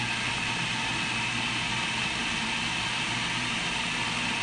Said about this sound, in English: And here I've got 1 cup full of pecans going right in. And that's what I'm gonna do about that. So let me get my blender going and let's hopefully we won't start a fire like last week. Here we go.